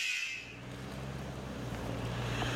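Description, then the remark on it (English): A short burst of hissing air at the start, like a truck's brakes releasing, fades into a steady, droning engine rumble from heavy truck traffic outdoors in Richmond, California. “It's peaceful out here. Yeah. Like birds chirping and trucks hitting their brakes.”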